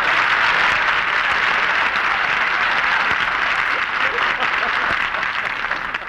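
Sustained applause from a studio audience greeting actress Barbara Stanwyck's entrance, a dense, steady wash of many hands clapping at an even loudness for about six seconds, tapering slightly at the end.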